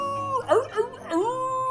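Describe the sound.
A person gives a short, wavering howl in imitation of a wolf, the voice sliding up and down in pitch over about two seconds, fairly loud.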